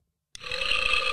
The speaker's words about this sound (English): Hey! How was that? Yeah, spooky burp.